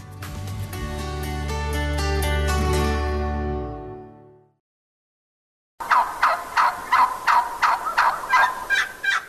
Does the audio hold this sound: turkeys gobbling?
yes